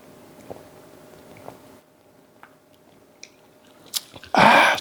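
A few soft clicks and wet mouth sounds of someone drinking Diet Mountain Dew soda, ending in a loud, breathy gulp or satisfied exhale after the swallow. No one speaks.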